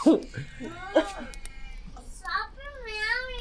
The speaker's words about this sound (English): Okay, problem averted. We're back on track now that the cat and the kid are stopping.